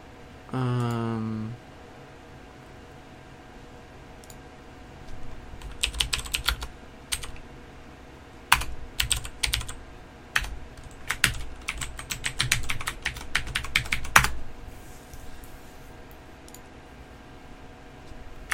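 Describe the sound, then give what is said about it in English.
Bursts of typing on a computer keyboard as a 10-digit mobile phone number is typed in, rapid clacking keystrokes in irregular clusters with short pauses, fairly loud, preceded by a brief low buzzing tone at the start. “I have, by typing it in and then clicking next.”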